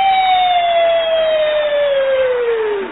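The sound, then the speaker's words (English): A voice imitates an emergency vehicle siren, holding one loud, continuous wail that slides steadily downward in pitch for about three seconds, with no other talking. “And the cars that come rushing across town be woo, woo, woo, woo, woo. And there won't be no siren.”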